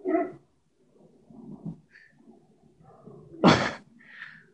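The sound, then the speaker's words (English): A dog guarding the house barks at another dog: a few short barks and yelps, one sharp loud bark standing out near the end, with low growly rumbles in between. “I think he's guarding the house from the other dog.”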